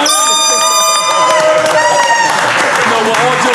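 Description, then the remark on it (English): A loud crowd cheers and claps steadily, with a few shrill whistles or high-pitched horn tones sustained over the roar in the first couple of seconds. “Make some noise for I'm gonna need y'all to clap louder because we made 5.”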